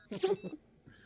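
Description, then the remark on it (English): A short electronic warble with sweeping, glassy tones, followed by a brief pause and a fainter trailing bleep, like a sci-fi phone chirping. “Time to call in a favor. Future phone!”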